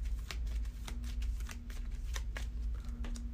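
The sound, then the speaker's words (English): Playing cards being shuffled back into a deck during a card game, a run of quick, crisp riffling snaps over about three seconds, moderately loud, with a low steady hum underneath and no talking. “Shuffle that back.”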